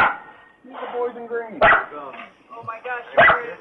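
A dog gives two sharp, loud barks about a second and a half apart, with whiny, harmonic vocal sounds running between them.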